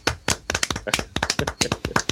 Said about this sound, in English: Okay. We're going to clap for you.